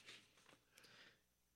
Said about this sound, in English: Your sneeze is incredibly gay. Like an old woman. I know. I've been told.